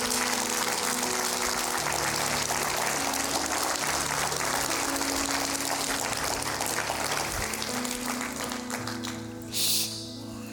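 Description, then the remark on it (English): A large church audience claps steadily as a hand clap of praise to the Lord, a dense wash of hand clapping that holds for about ten seconds over a low sustained organ-like tone, with no one speaking. “Would you stand all over the building and give him a hand clap of praise, not the preacher, but him.”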